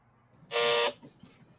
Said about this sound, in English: So we got everybody's buzzers at the ready.